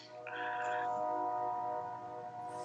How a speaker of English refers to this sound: Fucking train, dude. You and your train. Choo choo. Chaka chaka chaka chaka choo choo.